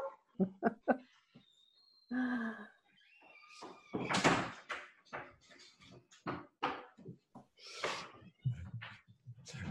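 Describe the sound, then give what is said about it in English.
A door is opened and handled to let a dog come in or go out, with a quick run of knocking thumps, a rattling slide, then clunks, scrapes and shuffling movement continuing around it. “There would not be a call without Michael Neal without a dog having to come in or go out.”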